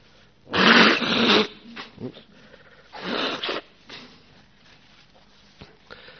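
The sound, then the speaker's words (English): Two loud, breathy nose blows at the start of a Buddhist talk, standing in for the sound of a conch; the first longer and harsher, the second shorter after a brief pause, followed by quieter sniffs and rustling. “We haven't got a conch here, so I'm blowing my nose instead.”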